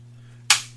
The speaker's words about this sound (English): I wonder if the mic heard that. What? The fucking... The little click. Shutter closing. You actually could hear it on the other episode